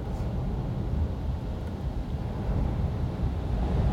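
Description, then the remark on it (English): Wind buffets a parked car, blowing against the driver's side and making the car wobble, in a continuous low, heavy rumble that swells slightly but never lets up. Fairly loud, with no voices. “My car's really wobbling. Can you hear that wind?”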